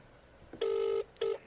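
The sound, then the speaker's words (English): A telephone rings with an electronic tone: one steady buzzing burst followed by a shorter second one, fairly loud, with no one talking. “Throw me a freaking phone here.”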